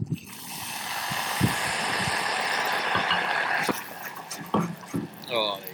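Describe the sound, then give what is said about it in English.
Rum from a bottle poured into hot caramel and butter sauce sets off a loud, steady sizzling hiss for about three seconds, then it fades as a person starts talking. “when I open a bottle of rum and pour it into our sauce”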